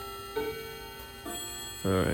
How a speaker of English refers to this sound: Let me let this clock run.